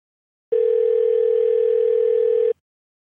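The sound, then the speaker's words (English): A phone ringback tone sounds once on a call to the Cuban Club, a steady electronic hum lasting about two seconds before cutting off into silence. It's clear and fairly loud, with no voices. “It just started ringing.”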